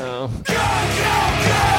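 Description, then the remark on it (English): A strained, held yell gives way to a loud burst of harsh, screamed vocals yelling "go" over dense, distorted music, sustained at full volume until the end. “It built to it, and they were saying go, which seems like an appropriate thing to yell.”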